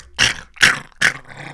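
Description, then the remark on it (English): A person imitates a snapping turtle growl with three short, harsh, raspy bursts in a steady rhythm, loud, with brief pauses between them. “They don't growl, but you know what I mean? Snapping turtles.”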